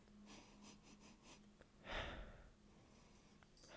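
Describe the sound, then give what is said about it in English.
Several quick, quiet sniffs, followed by one longer, louder breathy inhale, with no talking, as someone sniffs a glass of Smoke Wagon whiskey. “So let's give her a sniffy sniff.”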